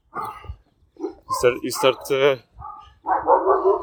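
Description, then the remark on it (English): A dog barks several times in quick bursts, fairly loud, with short gaps between, ending in a longer rough yelp-like bark. “Dog, you have something to say, dog?”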